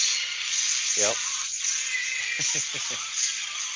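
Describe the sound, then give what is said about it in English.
A sound effect of the Optimus robot truck transforming in a video: a warbling mechanical swoop, then a quick run of four or five rhythmic, voice-like clanking pulses, all over a steady tinny hiss as if played from a speaker. “It's the Optimus transforming at the video I'm watching.”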